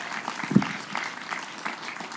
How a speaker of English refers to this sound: Would you give a round of applause, a big good morning welcome from Atmosphere Church to Pastor Samuel Laws.